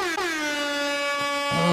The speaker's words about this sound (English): I'm going to have to air horn that shit, man.